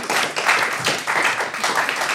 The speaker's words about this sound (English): a round of applause, everybody.